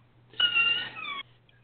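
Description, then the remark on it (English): A creaking door swings shut with one drawn-out, high-pitched hinge squeal lasting under a second, its whiny tone wavering and dipping slightly before stopping abruptly, over a faint steady low hum. “That's a door I'm closing”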